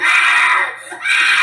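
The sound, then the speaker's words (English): A child yells and screams loudly and continuously, a shrill sustained wail that dips briefly in the middle before surging back at full force, with no other sounds. “yells grew louder”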